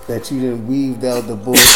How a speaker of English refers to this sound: Bless you